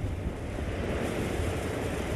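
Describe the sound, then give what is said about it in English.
Wind and rain of a powerful night storm in Hawaii, recorded at a habitat, roar in a steady, unbroken wash of noise, heavy in the low rumble with a hissing top, holding an even loudness throughout with no voices. “One night, a powerful storm strikes Hawaii, and the crew leaves the recorder on most of the night to catch the sound of the wind and the rain.”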